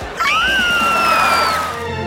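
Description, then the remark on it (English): A loud, high-pitched scream from a group of people screaming together in excitement, rising sharply and holding steady for over a second before fading out, with no talking around it. “I'm so excited. I could scream. Want to do it with me?”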